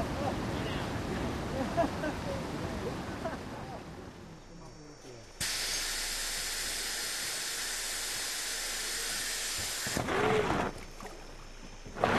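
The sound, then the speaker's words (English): Loud, continuous roar of churning whitewater as a raft plows through river rapids, takes a beating and flips, the rushing noise swelling and cutting in abruptly, with indistinct voices faintly audible near the start. “The last boat takes a beating and flips, but nobody's hurt.”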